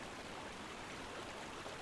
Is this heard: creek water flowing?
yes